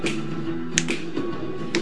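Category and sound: human body sound, finger snapping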